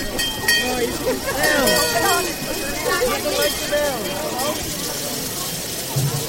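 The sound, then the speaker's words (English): Santa's hand bell rings at Christmas with a bright, sustained metallic tone that lingers for a few seconds, partly covered by overlapping voices chattering and calling out in a busy crowd. “Do you want to ring Santa's bell?”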